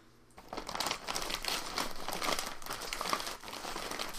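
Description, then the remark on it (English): Steady, close crinkling rustle of leaves being disturbed, continuous for several seconds with a broad hissy texture and small irregular bursts, no voices. “there are literally leaves rustling next to you”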